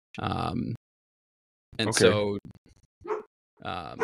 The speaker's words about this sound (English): Sorry, guys, my dog's barking.